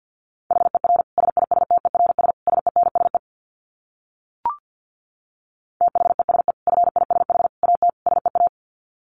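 Rapid Morse code dits sent at 50 words per minute, a steady mid-high tone keyed on and off in quick bursts, two long runs separated by a pause broken only by a single short click.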